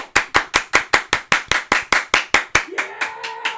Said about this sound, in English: We need to hear the applause.